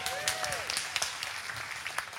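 An audience applauds in a steady, dense wash of clapping that holds for a couple of seconds, with a brief whooping cheer sliding across it near the start.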